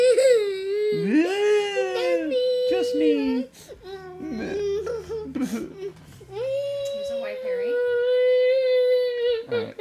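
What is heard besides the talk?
child crying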